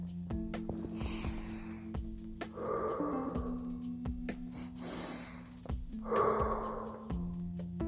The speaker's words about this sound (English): Breathing in cold air is a nice sensation.